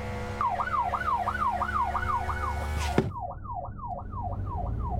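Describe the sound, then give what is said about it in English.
An emergency vehicle's siren, switched on to get through traffic near Whitechapel Tube, yelps in rapid rising-and-falling sweeps, loud, over a steady road and engine rumble, with a brief sharp click halfway through. “Just put the old blues and twos on.”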